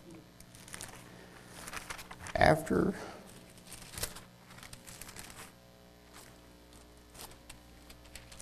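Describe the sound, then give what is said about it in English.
Paper rustles as book pages are turned to look for a chapter, with soft crinkling and a brief louder flip, quiet, followed by a spoken word. “I'm not used to turning pages much, but it's here somewhere.”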